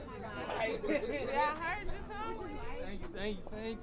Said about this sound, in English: And on the first week of the new year, just a couple of blocks east, a large crowd of about 100 people gathered on the sidewalk outside Sophie's Artist Lounge.